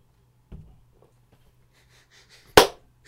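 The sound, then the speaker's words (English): A single sharp hand clap, made on the spoken cue word "pumpernickel" to check the lag on a call, rings out loudly near the end, preceded by a softer, duller thump and a stretch of faint background noise with no talking. “When I say the word pumpernickel again, clap.”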